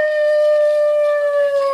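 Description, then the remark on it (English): A long, steady wolf-like howl at night out in the country holds one clear pitch, loud and sustained, then sags slightly lower near the end. No one speaks over it. “Costello, that sounded like a wolf.”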